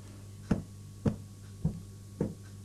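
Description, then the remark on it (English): Four evenly spaced, dull thumping video game footsteps of the player's character coming down stairs, each a soft low impact about half a second apart over a quiet steady hum, with no talking. “I guess that was me coming down the stairs, But Kent didn't move.”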